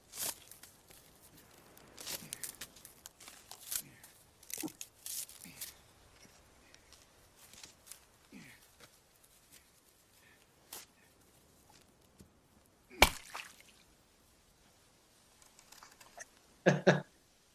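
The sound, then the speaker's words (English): Irregular scraping and tearing as Tom Hanks saws through and peels a thick coconut husk with a tool, with scattered rasping bursts, a sharp crack near the end, and no talking. “Peeling through a very thick husk.”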